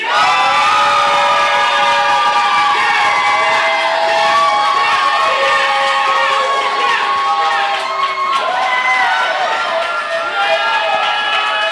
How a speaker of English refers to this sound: In what has been the closest result in applause voting history, this year's Pod Slam Rumble winner is